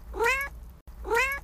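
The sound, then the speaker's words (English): Two domestic cats going wild: a cat meows twice in quick succession, two drawn-out, nasal calls, fairly loud, separated by a brief pause, with no voices present. “And oh my god, these cats are going nuts.”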